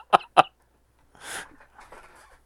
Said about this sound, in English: I'm going to hawk a loogie on them if I don't.